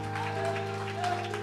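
An audience claps together in a steady, dense patter of many hands, sustained at an even level for the whole moment over a low, constant tonal hum.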